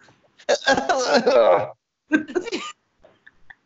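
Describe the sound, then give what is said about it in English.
A voice imitates an effortful cough: a long, strained vocal burst, then a shorter second cough-like grunt after a brief pause, fairly loud. “Just like an extra cough.”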